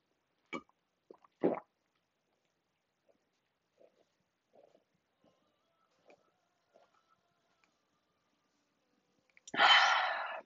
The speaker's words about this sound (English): So today, I'm going to take another sip of water. So pardon me for 1 second.